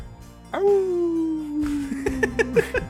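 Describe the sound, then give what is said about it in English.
A person imitates a wolf howl with one long, loud, drawn-out note that slowly slides downward for a couple of seconds, ending in a few short broken vocal bursts. “Or now do it like a wolf.”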